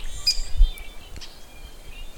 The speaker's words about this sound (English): They have like sounds of birds in nature. Yeah, I like that.